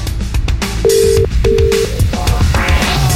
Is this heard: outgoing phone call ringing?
yes